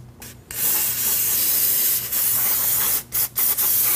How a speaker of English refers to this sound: So put down a bunch of towels and get some brake cleaner, spray that off and turn this as you go so you can get it nice and clean all the way around.